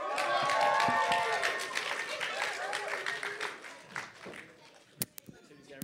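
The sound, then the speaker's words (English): A crowd at a Christian worship gathering applauds with dense, steady clapping and some whooping voices, loudest at the start and gradually thinning out, ending with a few scattered sharp claps. “So now as we are heading to the climax of our time together, please can we give it up for”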